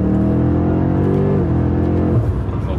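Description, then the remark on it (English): A 627-horsepower 5 Series CS sports sedan engine roars steadily from inside the car while driving through Box Canyon, its deep harmonic drone holding pitch then dropping as the driver shifts, loud and continuous with no talking. “we're driving a ridiculous car, a 5 Series CS through Box Canyon, and we're just amazed at this car.”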